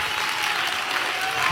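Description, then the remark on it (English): A church audience claps hands to give God praise during worship, a dense, steady wash of applause, loud and unbroken across the whole moment, with no voices standing out above it. “Oh, somebody ought to clap your hands and give God praise right now.”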